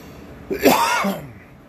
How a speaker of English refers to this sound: Pardon my cough, my sinuses are giving me hairy cat fits.